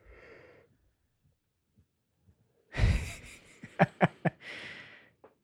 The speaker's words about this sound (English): Yeah, I should say you've been yawning for hours.